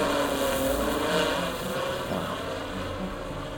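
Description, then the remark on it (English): A steady mechanical whirring of surveillance drones flying overhead through a town, scanning the streets and fields; a constant droning buzz with tonal layers that holds level throughout, loud with no voices. “These drones are everywhere. Scanning the streets, the fields.”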